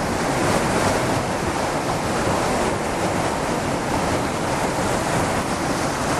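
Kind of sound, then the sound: nature, waterfall rushing water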